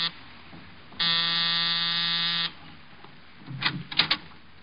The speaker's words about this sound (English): A half hour after I left George Victor, I was punching the buzzer to Saxon's apartment.